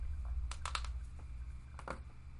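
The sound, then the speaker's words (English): A quick cluster of sharp, dry neck cracks, three or four pops in a row, then another pair of crackles a moment later, fairly faint over a steady low hum with no talking. “Don't crack your neck in the middle of a podcast.”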